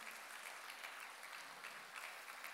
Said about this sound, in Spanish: Número 2, dele un aplauso al Señor si usted cree que Él es bueno.